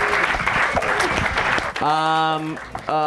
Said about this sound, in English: Give these guys a round of applause for the hypothetical situation.